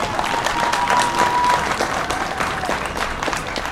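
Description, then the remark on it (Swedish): An audience applauds steadily, a dense, even wash of many hands clapping at a fairly loud level with no pauses, the sound holding constant for the whole stretch. “Applåd, jag håller med.”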